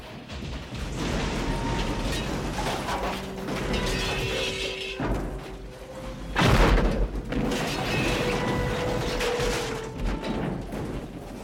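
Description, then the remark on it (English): A car crashes in a filmed stunt, a double barrel roll, with a steady roar of engine and rattling metal building to a loud, heavy impact midway, followed by more clattering and scraping as it tumbles. “And this so-called double barrel roll had not been done before.”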